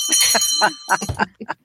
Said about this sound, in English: Yay, and there's a bell ringing. Yay. Somebody's getting their wings.